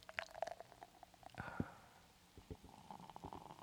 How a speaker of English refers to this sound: Okay, here we go. All right. You warned me it might be fizzy. Aye. I don't know. See? It's fizzing.